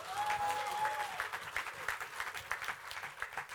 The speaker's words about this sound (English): If I were you, I would clap for Jesus.